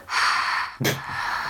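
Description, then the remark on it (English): Heavy, breathy exhales blown into a microphone, a long airy rush followed by a sharper gasp-like burst, loud and noisy with no talking. “Why are you heavy breathing into the mic?”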